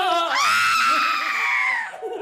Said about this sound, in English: Right, a different guy. What the hell is a white guy screaming about in 1951?